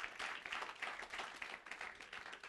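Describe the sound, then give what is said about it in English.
A crowd claps for Jesus and for themselves, many hands clapping at once in a dense, continuous wash of sound that holds at a fairly even level throughout, with no voices standing out. “Now, and clap for yourself.”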